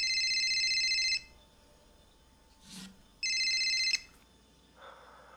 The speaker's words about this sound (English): Jesus. That's not my regular ring. That's not my regular phone. That's the burner. There is literally one thing in the whole world I need to accomplish in the next 60 seconds. Not answer that phone.